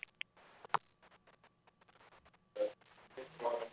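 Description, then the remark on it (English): A few short electronic beeps and button clicks from a phone handset as someone tries to turn it off after ending a call, moderately loud, with brief tonal chirps and soft fumbling noises between them. “How do I turn off this damn phone? Oh, there it goes.”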